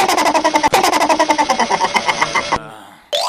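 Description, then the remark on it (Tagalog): A loud motorcycle engine chugs with a fast, steady pulsing rhythm for a couple of seconds, then cuts off abruptly, leaving brief quieter noise; many motorcycles are passing close together. “Daghang kay motor banti kay ang uban wa kay malay tungod sa dikit-dikit ba.”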